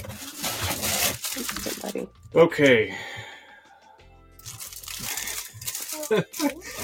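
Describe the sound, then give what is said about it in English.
Paper receipts crinkle and rustle in two bursts as a package is unpacked, fairly loud, with a short spoken word and a brief gasp-like breath between them. “Oop, there's paper in here. Oh, paper receipts. More paper receipts.”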